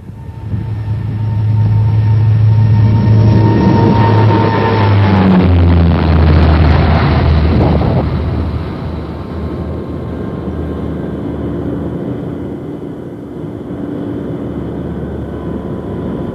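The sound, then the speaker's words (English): Jet engines of an Aer Lingus airliner roar at full power in a heavy, rumbling takeoff roll, with whining tones shifting in pitch. The roar holds loud for several seconds, then settles to a steadier, softer drone. “Foxtrot Yankee, roger, rolling. Full power, please.”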